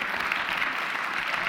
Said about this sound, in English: By the way, my tech arts presentations people need a huge round of applause because I am putting them to hard work today. I appreciate them.